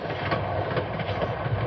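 A runaway train, going faster than ever, rumbles steadily along the rails, its dense, loud roar broken by a faint rhythmic clatter of wheels, with no voices over it.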